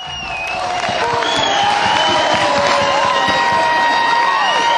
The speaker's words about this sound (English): And let's listen to the crowd and the fans, what they thought of the show.